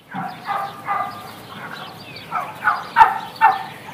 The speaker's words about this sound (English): That wasn't Dan Barber. Right. Yes. Those were turkeys.